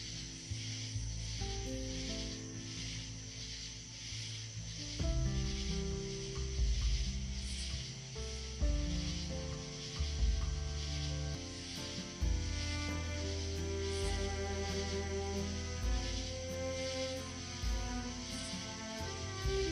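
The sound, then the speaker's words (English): Steady, rapidly pulsing high-pitched chirps of tree frogs at night repeat throughout, layered over a continuous low, tonal musical drone at moderate volume with no voices. “Chirping of the tree frogs and nature taking away to a healing place you want to be.”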